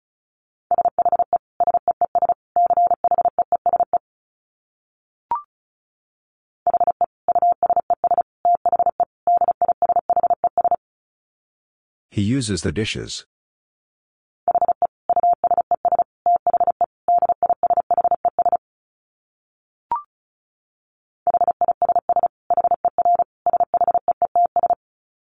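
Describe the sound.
Fast Morse code at about 35 words per minute: a steady mid-pitched tone keyed in rapid dits and dahs, broken into groups, with a brief spoken phrase in the middle and two faint clicks.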